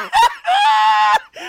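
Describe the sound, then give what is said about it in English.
A voice lets out a loud, high-pitched screech held for nearly a second, bracketed by shorter squealing yelps, mimicking a shrill scream. “Is it going to be high-pitched screeching?”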